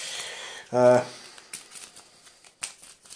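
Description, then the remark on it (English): The encounter deck of cards in a card game is shuffled in a quick, papery riffle, followed by a brief voiced sound and a few scattered soft card snaps and taps. “Well, it doesn't say. I'll shuffle it.”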